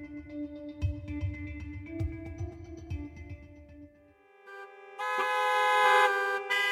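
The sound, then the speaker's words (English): Several car horns honk over one another in a New York City traffic jam, long overlapping blasts above a low engine rumble, then a louder, brighter horn blares near the end. No one speaks. “New York City is now the world's third most congested metropolitan area, and the traffic jams are dragging on the economy.”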